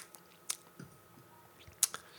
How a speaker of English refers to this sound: And as I said, a very pleasingly prickly carbonation. Mm. Taking another sip.